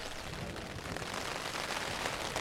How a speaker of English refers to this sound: So you're hearing the sound of rain and hail hitting my tent. There's obviously thunder going off in the background. Lots of flashes of lightning.